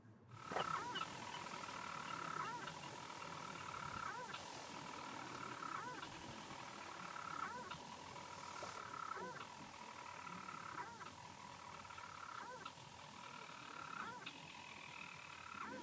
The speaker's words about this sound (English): So the sound we're listening to is a storm petrel. And these storm petrels are tiny little birds that live here on Moosa in Shetland. And they live literally under boulder rubble, or they nest under boulder rubble.